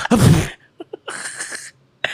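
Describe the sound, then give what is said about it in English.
A voice imitates the character Adachi's sneeze with a loud, breathy burst, followed by a few short clicks and a longer hissing, exaggerated exhale, then another brief outburst at the end. “He was like, achoo.”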